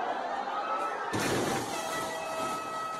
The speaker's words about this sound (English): And that fucking air horn, dude. That is so annoying.